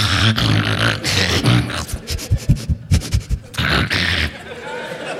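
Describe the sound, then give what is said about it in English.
A person's voice imitates their dog Blossom, with a loud rough burst, a run of quick rhythmic panting-like huffs, then more gruff vocal bursts. “Anyways, So I got the cognitive behavioral therapy, and about the same time, I got my dog, Blossom, who was a quick impersonation.”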